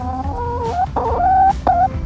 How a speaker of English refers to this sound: This is my chicken Mabel.